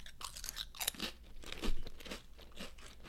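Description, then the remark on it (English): Someone bites into a thin, bready chip, not a kettle chip, followed by a run of sharp, dry crunches and chewing, irregular crackles with one louder burst in the middle, no talking. “It's a thin, thin chip, but it's a bready chip. Take a bite.”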